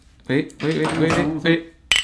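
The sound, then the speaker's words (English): Voices murmur for a moment, then a single bright, ringing clink of glasses sounds sharply at the very end, like a toast. “Cheers, mate. All right.”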